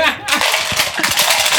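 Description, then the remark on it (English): Dice clatter onto a hard table in a quick, dense burst of rattling clicks, fairly loud, tumbling and skittering for a moment before settling; 11 dice on the table. “11 dice on the table.”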